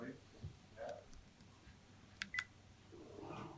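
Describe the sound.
Two quick telephone dialing tones beep in close succession, short and fairly clear, as a man calls another person's phone, over a low murmur of background voices and room noise.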